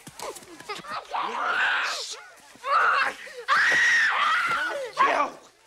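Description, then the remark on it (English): A person yells and screams in several strained, loud bursts, reenacting a scene from Of Mice and Men, with brief gasping pauses between outcries that rise and break in pitch. “George is going to be mad if you yell.”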